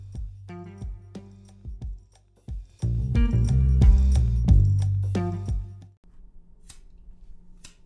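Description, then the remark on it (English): Repeated sharp clicks of a lighter being flicked, several quick strikes in a row, mixed with sustained tonal music that swells louder midway and then drops to a quiet hum. “Are you struggling? There's another lighter.”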